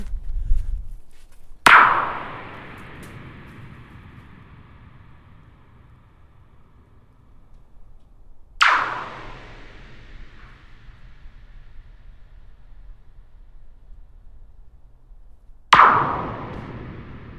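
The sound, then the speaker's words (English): Three loud metallic strikes from rocks thrown at an empty metal water tank, spaced about seven seconds apart, each a sharp bang followed by a long, booming ring that slowly fades with a low hum underneath. “That's a great sound. What is it? It's a water tank. No water in it?”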